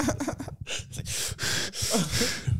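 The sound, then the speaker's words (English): A voice imitates heavy, rasping breathing, with several loud, breathy inhales and exhales in an uneven rhythm, with some short voiced grunts mixed in. “He's gonna be sitting there breathing heavy, trying to amp himself up to come get you next.”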